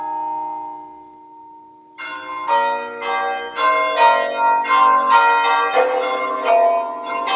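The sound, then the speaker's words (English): Church bells of a monastery ring loudly for a monk's death: a lone bell's lingering hum fades, then several bells break into a rapid, overlapping peal of steady strikes that keeps going, with no voices. “When the death toll begins, you will often see monks drop what they're doing and come to the church to pray.”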